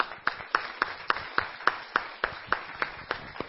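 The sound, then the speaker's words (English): A church feast audience claps for the young people in a steady, even rhythm, about three claps a second, with sharp beats rising over a dense, continuous wash of scattered applause. No one speaks. “You know, can we have applause for our young people?”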